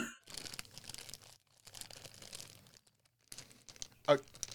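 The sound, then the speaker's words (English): Rustling and crinkling of a bag as unsorted dice are pulled out, in several bursts with short pauses, ending in a sharper clack of small hard objects. “I'm pulling dice out of a bag.”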